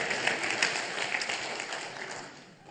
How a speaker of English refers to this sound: Oh, it's like golf clap.